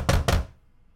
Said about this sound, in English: Did you order a pizza or something? Somebody keeps knocking.